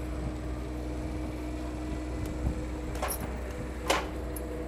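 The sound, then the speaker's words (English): A steady electric motor hum drones as an automatic vehicle door lowers, ending in a couple of soft mechanical clunks as it settles shut. “But with the automatic door, I'm self-sufficient. Yeah. That's nice. I like the way it comes down.”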